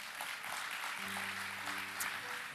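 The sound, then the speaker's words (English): An audience at Freedom Church claps in a steady, dense wash of applause that holds at an even level throughout, with a low sustained tone briefly humming underneath midway. “This Christmas, that's right, you can clap.”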